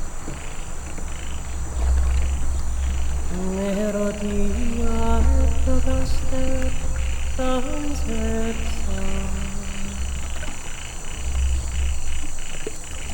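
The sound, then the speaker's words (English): Trees squeak and creak in the wind: a run of wavering, pitched groans with rising and falling tones over a steady rushing hiss, lasting several seconds before fading back into the windy background. “When the wind blows, occasionally you can hear the trees make a little squeaking, creaking noise.”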